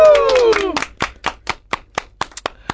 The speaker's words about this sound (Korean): 자, 박수 다시 한번 쳐드리죠, 우리.